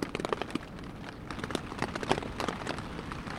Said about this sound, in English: So here I am in the dark, in the tent, in the rain, listening to the thunder.